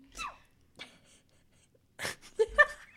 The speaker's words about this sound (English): That's a lot of sneezing. I don't, you know... Sorry. I don't know why I'm sneezing so much. I have a pretty bad pollen allergy,